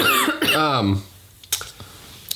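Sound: cough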